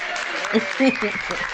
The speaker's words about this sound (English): Yeah, let's clap for me. Yes.